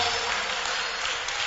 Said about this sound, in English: Keep clapping for them.